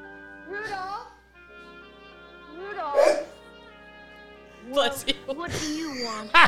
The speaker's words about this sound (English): Our one of our co-hosts almost died just now. Suppressing a sneeze.